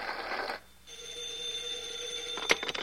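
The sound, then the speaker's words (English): A telephone rings with a steady, sustained bell-like tone lasting a couple of seconds after a brief burst of noise, moderately loud, with no one speaking. “I'll get the phone.”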